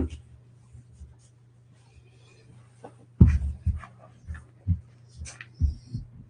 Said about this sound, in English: Go lay down, Roger. Can you guys hear my dog crying? I'm so sorry.